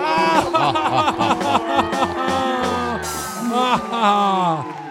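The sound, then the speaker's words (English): Several voices scream and wail at once, overlapping in loud, wavering cries of terror and pain that rise and fall continuously for several seconds. “This is all the screams of terror and pain in the background, yo.”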